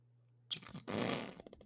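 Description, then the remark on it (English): A pink squishy toy from the dollar store, squeezed, lets out a fart-like noise: a quick puff, then a longer raspy sputter, trailing off into a few short pops, with no one talking. “This is my squishy.”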